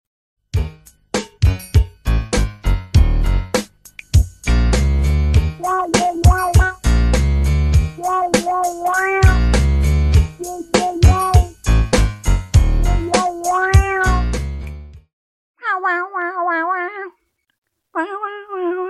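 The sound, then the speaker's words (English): A bouncy jingle from a foot odor spray ad, with a punchy, steady beat and meowing notes woven into the melody, followed by a few short meow-like calls once the music drops out. “I don't know if it's possible, maybe without the meows, but doesn't that music sound like the sneak music for the Mom Detectives?”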